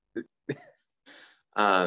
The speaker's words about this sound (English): anyways, cough,